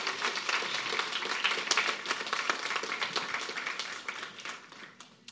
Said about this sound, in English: He wants to hear you clap for him.